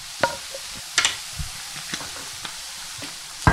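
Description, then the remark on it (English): Salted eggplant sizzles in about 2 tablespoons of oil in a hot frying pan with a steady, soft hiss, broken by a handful of sharp pops and scraping clicks spaced irregularly across the few seconds. No one speaks. “Now we're going to add our eggplant to the pan and add some salt as well.”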